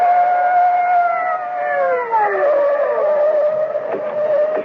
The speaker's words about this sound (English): Above them, on the bank, at the edge of the circle of light from the overhead street lamp, the bushes still wave slightly in the wake of Augie's flight from the blare of police sirens as two patrol cars come hurtling out of the night.